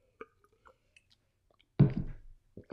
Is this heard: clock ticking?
no